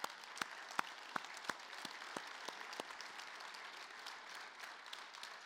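An audience at a church service stands and applauds in a steady wash of clapping, with a few sharp, louder claps standing out early on before the applause settles into an even, moderate patter.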